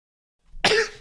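A single sharp cough bursts out after a brief moment of silence, loud, with a rough, throaty edge.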